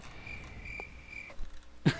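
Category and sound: insect, crickets chirping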